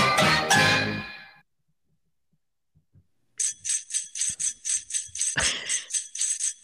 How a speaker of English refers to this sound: Can you find those bells, Guy? Oh, I thought you wanted me to play them right after Gadget Snippets.